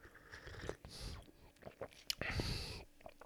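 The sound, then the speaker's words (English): Quiet slurping sips of hot tea from a big, steaming mug: a short airy slurp, a few soft mouth clicks, then a longer breathy sip, with no talking. “And I'm going to have a sip.”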